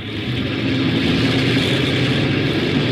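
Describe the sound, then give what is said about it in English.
A propeller airplane's port engine number 1 starting up during takeoff checks, its low rumble swelling quickly into a loud, steady drone with a throbbing hum, uninterrupted for a few seconds. “Port engine 1.”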